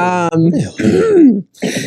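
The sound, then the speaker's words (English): A person clears their throat with a few rough, guttural rasps in quick succession, fairly loud, with voiced grunting tones between the bursts. “as I clear my throat.”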